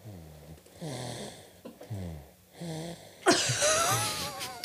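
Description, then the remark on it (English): A baby girl snores through an open mouth, a quick run of raspy, throaty breaths in steady rhythm as she is held up to the microphone, followed by loud rustling and handling noise near the microphone. “She's just snoring away. We can hear … snoring.”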